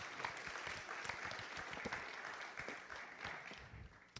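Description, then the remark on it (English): An audience at a worship gathering claps steadily for about four seconds for visiting performers who are playing at Disneyland, a dense, even wash of many hands with no voices standing out, fading slightly toward the end. “Let's just another hand of applause.”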